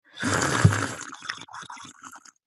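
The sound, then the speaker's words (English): A voice imitates Charlamagne on the phone, noisily slurping like someone drinking hot tea: one long, wet, hissing suck, then a run of shorter, choppy gurgling slurps that fade out. “I was like, nigga, you trying to blow bubbles in a pool? Like, what are you doing?”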